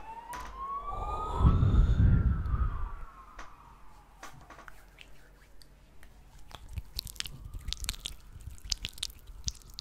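An ambulance siren wails, its tone sweeping up and down, while wet squishing and clicking sounds continue in the foreground. No one speaks.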